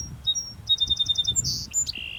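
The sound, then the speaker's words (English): A songbird sings a quick run of bright, evenly spaced whistled notes resembling a famous four-note classical music motif, then shifts into higher, longer whistles. Clear over a low background rumble, with no voices. “What piece of classical music does it sound like this bird might be trying to sing?”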